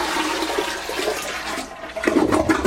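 Water scooped from a filled bathtub is dumped into a toilet bowl during a power outage in Florida, setting off a rushing, gurgling flush that swells louder near the end. Fairly loud, with no one speaking.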